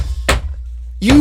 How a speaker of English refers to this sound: Sorry, guys, construction.